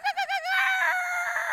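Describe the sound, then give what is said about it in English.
A rooster crows: three quick wavering notes followed by a long, drawn-out strained call, loud and clear with no other sounds around it. “Fuck chickens.”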